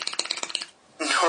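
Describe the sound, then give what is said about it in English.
A quick run of about ten light taps, like fingers drumming on a hard surface as an improvised drum roll, fairly loud, stops briefly and then gives way to a burst of hissy noise. “That was a drum roll.”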